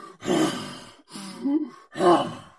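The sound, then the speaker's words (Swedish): A person imitates air rushing through a glowing volcanic vent with lava at the bottom, with three loud, breathy, groaning exhalations in a steady rhythm, each a rough whoosh of breath with a moaning voiced tone. “Så är det, liksom, det låter nästan som jorden andas.”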